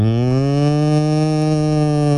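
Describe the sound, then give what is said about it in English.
A person imitates a cow with a deep, guttural moo, one sustained low bellow lasting a couple of seconds, loud, with no other talking. “You have a very guttural cow.”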